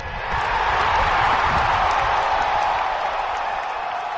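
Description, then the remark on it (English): A crowd noise sound effect: a steady, loud wash of crowd noise with indistinct cheering and murmuring that holds evenly for about four seconds, swelling slightly at the start and easing a little toward the end. “We need to get the crowd noise. Did, put the crowd noise in.”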